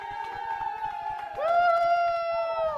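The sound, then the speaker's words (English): A group claps steadily while voices cheer and whoop in sustained, ringing tones, greeting a couple dozen healthcare workers from the Cleveland Clinic; the crowd noise swells louder halfway through and stays lively to the end. “and plenty of cheering. Noises you'd find, perhaps, in a place like the locker room of an NBA arena.”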